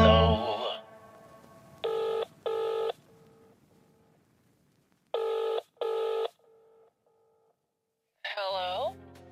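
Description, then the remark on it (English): A telephone rings with two distinct double-ring bursts, loud, each followed by a fainter echoing repeat; brief music bookends the rings at the start and end. “Well, it was ringing then.”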